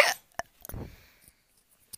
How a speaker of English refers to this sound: If you hear a weird noise like that, it's because I'm hiccup.